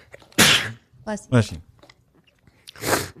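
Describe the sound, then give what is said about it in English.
A loud sneeze: two sharp, breathy bursts a couple of seconds apart, with a brief voiced gasp between them and quiet around them. “Bless you.”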